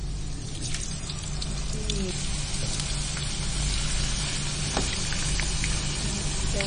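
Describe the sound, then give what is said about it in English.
Potatoes deep frying in hot oil in a wok, a dense, steady sizzle with scattered crackles and pops, fairly loud, continuing evenly throughout. “And the potato is going to go into this oil. So there's a reasonable amount of oil in the wok for kind of deep frying.”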